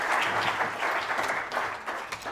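An audience applauds the actors after a nativity reading about the angels and shepherds, steadily, a dense wash of many hands clapping at once, sustained and fairly loud throughout with no voices standing out.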